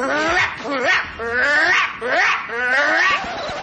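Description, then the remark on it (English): A human voice imitates a dog's aggressive barking: four or five loud, strained bark-like bursts in quick succession with rising and falling pitch and little pause between them. “The aggressive bark is...”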